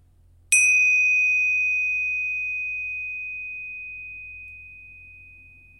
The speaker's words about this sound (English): As always, the chimes will indicate the start and end of the meditation.